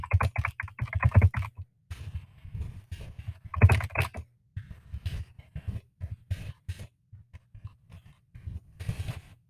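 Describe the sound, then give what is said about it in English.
Hunt-and-peck typing on a computer keyboard, clear: uneven clusters of key clicks with short pauses between them, a few quick flurries amid slower, searching taps. No one speaks. “let me just hunt and peck type for you”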